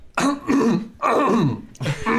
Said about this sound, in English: He takes a deep breath and sighs as loud as he can. It's too much, though, when he begins to cough.